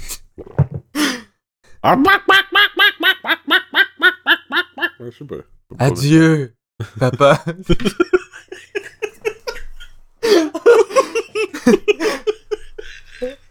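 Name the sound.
person imitating chicken clucking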